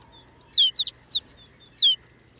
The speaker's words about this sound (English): Undulating back and forth, the small cloud finally settles to the brown earth. Now it's clear that rolling white cloud isn't snow at all, but a flock of snow buntings. These birds bring the barren landscape to life.